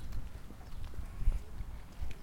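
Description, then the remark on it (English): Donkey hooves clip-clop in a steady, uneven patter on hard ground, with a low outdoor rumble underneath and no one talking. “Donkey.”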